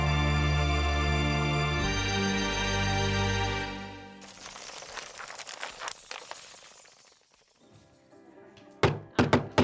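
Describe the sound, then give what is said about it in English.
A sustained tonal hum gives way to quiet rustling, then three or four sharp knocks on a door in quick succession near the end, as welcome visitors arrive bearing ice. “Knock, knock, welcome wagon.”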